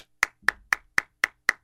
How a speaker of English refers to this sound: What a douche applauding himself.